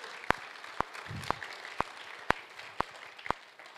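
Steady, evenly spaced hand claps, about two per second, seven sharp claps over a low room murmur, like a group clapping together in rhythm.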